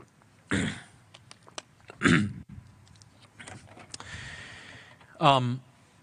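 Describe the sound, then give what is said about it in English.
A person with a dry throat clears it with a few short, rough coughs spaced a couple of seconds apart, ending in a brief voiced grunt, with quiet background noise between. “Throat's a little dry. I feel like every time anyone coughs, you got to explain it to the people, right?”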